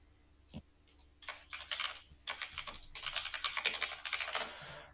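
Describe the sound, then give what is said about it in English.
Rapid, dense computer keyboard typing as someone types "piece of element common" into a field, a flurry of crisp clicks that starts after a brief tap and runs steadily for several seconds with short pauses between bursts. No one speaks. “So I'm typing piece of element common in there, and this is status.”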